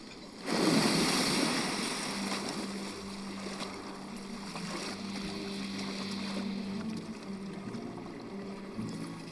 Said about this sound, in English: Shut off that engine.